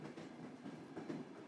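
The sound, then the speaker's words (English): Steam train wheels clatter steadily over the rails in Scotland in a continuous rumbling clickety-clack, moderately loud, with faint rhythmic knocks riding on a broad roar and no voices. “The train clicked and clacked over the tracks.”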